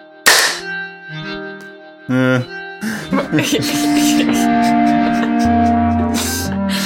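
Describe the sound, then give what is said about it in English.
One loud, sharp big hand clap, done after a 3, 2, 1 countdown, rings out, followed by sustained ringing tones and layered musical sounds that swell and continue steadily to the end. “Okay, let's do the big clap.”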